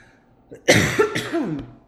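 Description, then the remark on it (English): A loud bout of coughing: a couple of harsh, forceful coughs in quick succession, followed by a raspy, throaty tail as the breath settles. “And I'm gonna start coughing again.”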